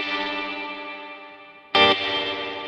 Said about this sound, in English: So that's it. And that cuts, I just show you the difference between tremolo behind the reverb and tremolo before.